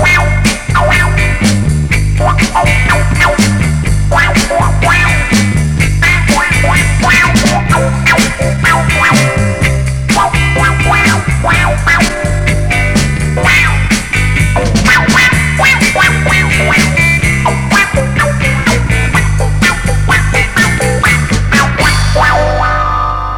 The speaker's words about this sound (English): Wah-wah pedal lets you make your guitar growl.